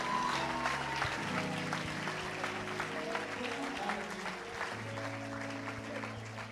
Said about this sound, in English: I feel like it's only my sons that are clapping.